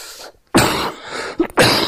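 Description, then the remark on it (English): Two close, forceful coughs separated by a short pause, loud and harsh with a raspy, throaty quality, with no talking around them. “Can I cough? Pardon me.”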